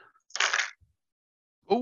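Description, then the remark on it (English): A quick clattering rattle of nine dice tumbling across a surface, lasting about half a second, followed by a faint soft knock as they settle, then a voice starts speaking. “I will now roll 9 dice and get.”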